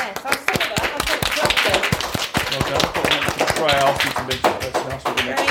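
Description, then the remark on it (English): A small group claps steadily for several seconds for a winner of an environmental poster competition, a fairly loud patter of sharp, uneven hand claps with voices murmuring underneath. “Give well her a clap.”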